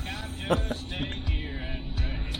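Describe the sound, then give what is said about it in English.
Country music plays at a moderate level inside a police officer's car, heard on his body camera during a traffic stop, slightly muffled, with a steady engine hum and a few dull thumps and knocks from movement as he gets out of the car. “He's listening to country music.”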